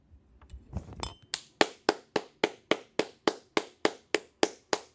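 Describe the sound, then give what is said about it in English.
A single pair of hands claps about a dozen times in a steady, even rhythm, each clap sharp and crisp, after a brief low rustle at the start. No one speaks. “Let's all give me a little clap.”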